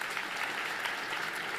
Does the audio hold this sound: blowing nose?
no